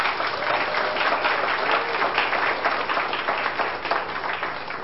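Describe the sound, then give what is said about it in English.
A crowd applauds steadily, a dense wash of many hands clapping at an even, sustained loudness for several seconds without pause or speech. “I think they deserve another round of applause.”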